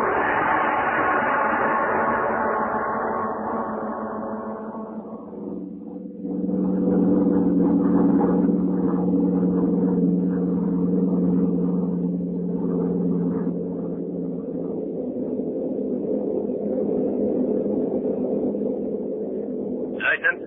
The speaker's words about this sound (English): The scene is a bombing plane flying over England.